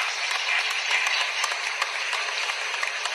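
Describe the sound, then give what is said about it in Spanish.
Steady applause from a crowd, a dense wash of overlapping claps with scattered sharper hand strikes, holding at an even, moderate loudness throughout with no voices. “Me merezco un aplauso.”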